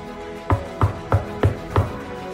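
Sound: knocking on a door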